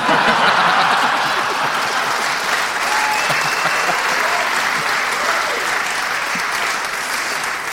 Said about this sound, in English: Well, I think that's the first time in Bugle history that someone has been applauded for eating a shawarma kebab.